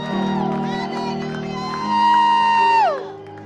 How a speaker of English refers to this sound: Clap for the Lord Jesus and give the Lord a mighty shout of praise.